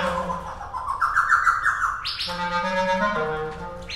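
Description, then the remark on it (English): A laughing thrush with brown feathers and a dark beak calls with a run of bright, rising whistled notes, then a rich, harmonic phrase that swells and rolls on; no one speaks. “The laughing thrush was interested.”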